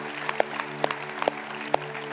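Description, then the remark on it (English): A small group claps loosely and unevenly at a party, a few sharp louder claps standing out among softer scattered ones over a steady low hum, with no talking. “Let's just actually clap because it's a party.”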